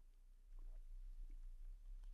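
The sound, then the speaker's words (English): Several quiet gulps of water swallowed one after another by a speaker pausing a talk for a drink, soft wet throat sounds over a low steady background hum, with no talking. “I know, that was more than a sip. A guzzle of water.”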